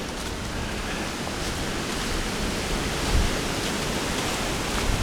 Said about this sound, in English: And so if I'm out on a day where it is a strong wind like this, it's always a good idea to try to find a spot that isn't so windy. Now, unfortunately, I'm on a trail that doesn't have very many of those spots